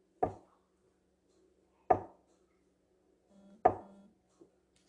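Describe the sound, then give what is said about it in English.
Three solid, dull thumps of a head bumping against a closet shelf in the middle of the night, spaced roughly evenly with short ringing decays, followed by a faint small knock at the end. No one speaks. “you're like bumping your head against the shelf”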